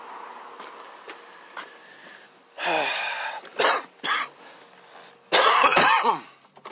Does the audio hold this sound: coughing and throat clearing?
yes